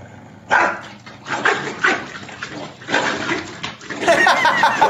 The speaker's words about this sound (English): I've never seen an angry corgi before. They're scary. I don't like them.